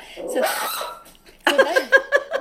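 A small Maltese Shih Tzu puppy barks: first a rough, drawn-out yap, then a quick run of four or five sharp, high-pitched yips in rapid succession.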